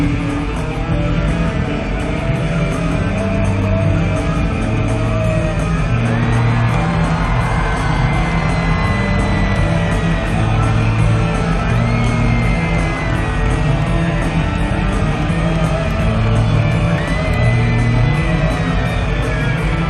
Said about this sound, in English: There's two or three different points in the crowd where there's just a surge of applause.